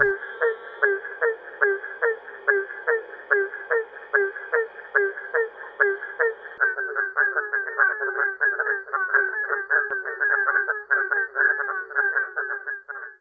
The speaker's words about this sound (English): Sounds like it's barking to me, so I'm going to go with like a barking frog. I'm saying chorus. Because it was whoop, whoop, whoop. That was a barking tree frog.